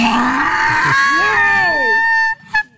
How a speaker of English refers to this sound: Right after the big noise, doesn't it sound almost like a squeaky toy? All right, listen. Big noise. Big donkey noise, and then listen. It's almost like donkey squeaky toy.